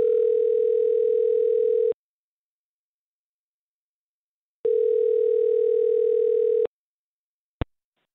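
A telephone ringback tone from the Mix 94.7 morning show calling a listener sounds twice, each a steady two-second buzzy ring separated by a long silent pause, followed by a sharp click as the line picks up. No one speaks.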